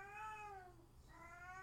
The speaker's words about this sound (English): I'm currently joined by our voice actor for the character Bass, who is my cat Runt